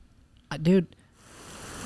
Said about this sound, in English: Great, now it's raining.